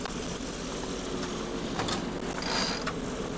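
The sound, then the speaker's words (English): A big mainsail being hoisted fast on a sailboat facing into strong wind: rapid ratcheting clicks and squeaking pulley sounds over a steady rush of wind, with a brief high-pitched whine near the end. “So mainsail's going up.”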